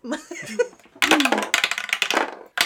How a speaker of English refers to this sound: Let's roll dice on this shit show.